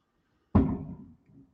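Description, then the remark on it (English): A single firework bang cracks out of silence in the distance, its deep rumble fading over about half a second, followed by a softer, brief thump; fireworks set off outside a house on New Year's Eve. “Does anyone hear them fireworks going off?”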